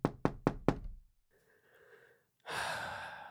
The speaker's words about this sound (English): Who's at the door? Well, remember that they knocked and that you love knocking, so this is a positive to start off with. Who is at the door?